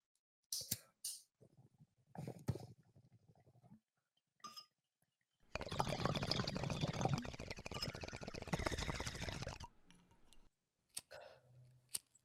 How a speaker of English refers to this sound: And now I'm also going to be smoking the RS-11 from Cookies. So that we can really give it a good opinion later.